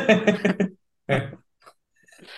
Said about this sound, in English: yeah, the lovely sound of me chewing a pork pie while commentating.